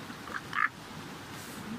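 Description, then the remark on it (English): A duck gives one short, nasal quack, preceded by a fainter, briefer one, heard alone against a low, steady background hush. “Talk, blah, blah, blah, blah, quack, you know?”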